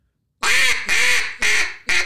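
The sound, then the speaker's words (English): Four loud, raspy duck quacks in quick succession forming a four-note greeting call, each note a short nasal blast with a steady rhythm, clear with no other sounds around them. “and I was just going to say you can go shorter, too. Like, you can do four notes.”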